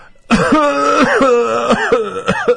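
A run of shallow, dry little coughs, fairly loud. Several quick hacking bursts follow one another with a throaty, voiced rasp between them and no speech.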